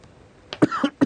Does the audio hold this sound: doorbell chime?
no